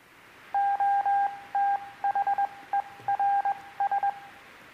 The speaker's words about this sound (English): And so Booth ponders it and then issues a telegram, not with a paragraph, not with a sentence, but with one English word. It looked like this. Anybody know Morse code? It's telegrams. It sounded like this.